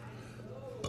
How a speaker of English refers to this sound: That's a burp for you, as I block you and mute you.